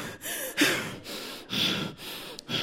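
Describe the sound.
A voice imitates a sister's heavy, exasperated breathing on the phone: a series of loud, rough huffs and gasps in an uneven rhythm, with brief pauses between breaths and no words.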